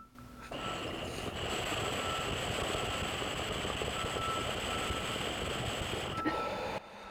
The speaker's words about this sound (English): Whoa, there's a big truck outside.